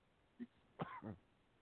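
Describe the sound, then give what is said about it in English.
A brief throaty catch, then two harsh, sputtering coughs in quick succession, fairly loud, from someone choking on coffee, with no talking around them. “And coffee, cough, choke, choke, land.”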